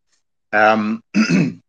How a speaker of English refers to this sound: sorry, one sec, I should have to clear my throat.